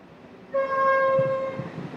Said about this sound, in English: So our views were given off about the rail service and whatever else, and as it turns out, we could hear the express train coming. The train always whistles as it comes around the corner.